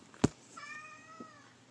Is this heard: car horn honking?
no